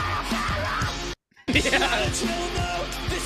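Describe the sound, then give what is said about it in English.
A harsh, distorted metalcore scream, the vocalist's real scream, roars loudly over pounding drums and dense heavy music. It is broken by a brief moment of silence before the screaming resumes. “That is his real scream.”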